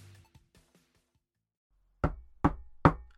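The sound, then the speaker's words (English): Three firm, evenly spaced knocks on a door, loud, follow a brief near-silent stretch with a few faint taps at the start. “Answer the door, I can't.”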